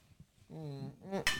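Glasses of mimosas clink together in a toast, one short bright chime with a ringing tail near the end, just after a brief voiced sound.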